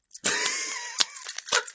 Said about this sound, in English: Yeah, just like, jiggle some keys. Keys.